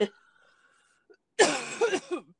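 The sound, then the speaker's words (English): A loud, harsh coughing fit bursts in after a short quiet pause, raspy and throaty with a couple of rough voiced catches before trailing off. “All you need to cough.”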